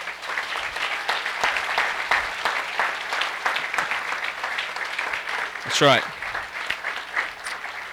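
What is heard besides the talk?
audience applause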